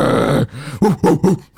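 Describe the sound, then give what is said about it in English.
A voice mimics a dolphin call: a drawn-out, wavering squeal followed by three quick, chattering bursts, loud and alone with no talking. “What sounds the Dolphins make? Some shit like that.”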